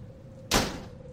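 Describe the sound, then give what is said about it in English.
An open front door letting in a cold draft is pushed closed by a half-asleep man with a single solid thud that rings out briefly and fades, set against a quiet living room with a faint steady hum and no voices. “James rises, stumbles, half asleep, towards the door, and pushes it closed.”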